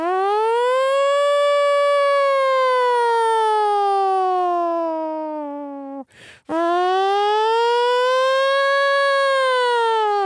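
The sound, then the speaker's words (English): A voice imitates a nuclear air-raid siren with a loud, sustained wail that slowly falls in pitch, breaks off briefly for a breath, then rises and holds again, alone. “Yeah, that was a really good impression of like those.”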